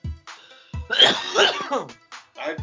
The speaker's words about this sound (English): I brought a little something since I'm feeling like better enough that I can cough like reasonably and survive the experience.